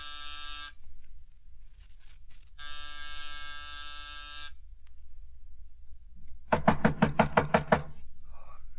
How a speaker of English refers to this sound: It was close to 5:00 when I rang his doorbell.